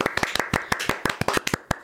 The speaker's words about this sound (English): How cool is that? That's amazing. A little bit of a round of applause for ourselves.